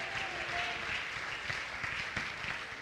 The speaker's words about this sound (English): Oh, clap your hands and shout to the Lord here today.